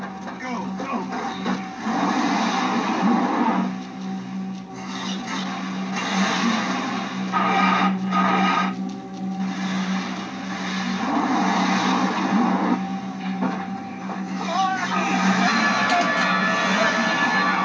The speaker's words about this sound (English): Like, you still, you see bits and pieces of Blake and his men, but the way they're closing in on the car while the car is, you know, struggling to get out of place.